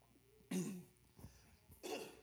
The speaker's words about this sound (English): Sorry about the cough. It's not COVID.